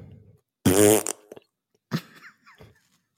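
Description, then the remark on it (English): A loud, buzzy mouth fart lasting about half a second, a wet raspberry blown with the lips to imitate flatulence, followed by a few quieter, brief vocal sounds. “You nailed the fart noise.”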